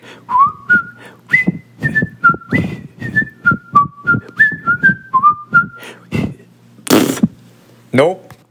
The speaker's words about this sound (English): Wait, let me see if I can do the whistle.